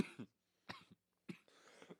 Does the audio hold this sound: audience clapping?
no